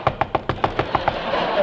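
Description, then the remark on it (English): A rapid series of about eight sharp knocks on the wooden door of Lil's hideout, evenly spaced, followed by a brief moment of quiet. “I knocked on the door.”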